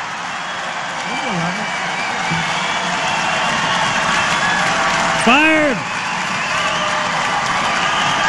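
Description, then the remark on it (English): A large crowd applauds and cheers in a steady, dense roar that fills the whole clip, while a single voice shouts briefly over the noise a couple of times. “I just want to hear all the applause.”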